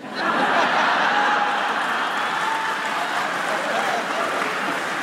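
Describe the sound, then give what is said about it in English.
Steady applause from an audience after a joke that the Japanese word 'takai' means expensive, a dense crackle of many hands clapping that stays loud and even for about five seconds, with some laughter mixed in and no clear speech. “Oh, you're applauding that.”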